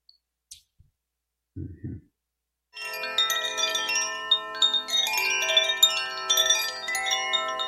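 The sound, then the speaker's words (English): Koshi chimes ring softly, a wash of overlapping bell-like tones that shimmer and sustain, with new strikes blooming every moment. A short low thump comes just before the chiming starts. “Okay, Koshi chimes, see if we can find something that pops up here. We'll just do a little video of Koshi chimes.”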